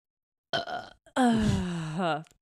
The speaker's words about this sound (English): And I need to burp so bad.